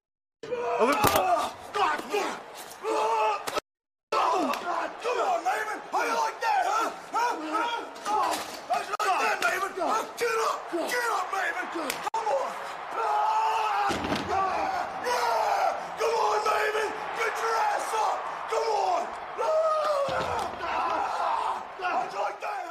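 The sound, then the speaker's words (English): A wrestler, Snitsky, yells loudly and repeatedly over a roaring arena crowd as he beats up Maven, with occasional thuds and slams of impacts. The noise stays dense for the whole stretch, pausing only briefly near the start. “Snitsky, he Pearl Harbors Maven here, and he just beats him up, busts him open, and he's yelling like a banshee, dude.”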